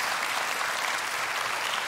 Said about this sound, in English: And so if you love your pastor like I love him, would you just put your hands together and give God a hand clap of praise for the leader of this house?